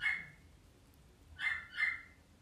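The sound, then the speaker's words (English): A dog barks three times: one short bark, a pause, then two quick barks close together, with no talking over them. “If you can hear the dog barking, it barks a lot now.”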